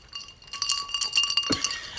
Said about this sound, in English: I just love that we have the ice cubes today.